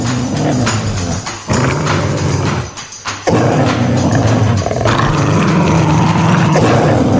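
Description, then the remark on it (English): Several dogs bark, growl and snarl at each other in a loud, continuous confrontation, with a brief lull partway through before the commotion surges again. No one speaks. “So it's them squaring off against the other dogs.”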